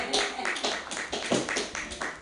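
A crowd claps steadily, a dense patter of many hands with quick sharp bursts running together for a couple of seconds, fairly loud and without any talking over it.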